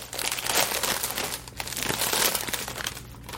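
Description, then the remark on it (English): A chip bag crinkles and crackles steadily as it is opened, loud bursts of bright rustling in two main waves with a short lull between, no voices. “I guess I'm going to open it up.”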